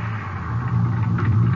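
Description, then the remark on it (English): A car's engine rumbles low and steady as the vehicle pulls over and slows to a stop on an empty highway near Odessa around 4 a.m., with no voices. “Guess I can stop any place on this highway.”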